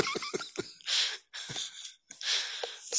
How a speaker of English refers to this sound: I seem to be about to fall asleep here. I've never yawned so much in my life.